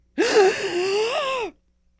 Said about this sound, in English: Okay, can you take a deep breath for me?